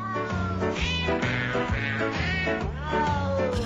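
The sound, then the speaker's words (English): Sampled cat meows, pitched up and down to carry a melody over a steady, bouncy backing track, repeating rhythmically for the whole stretch with no one talking. “in reality it was like one mean guy, like, torturing a lot of cats for a long time.”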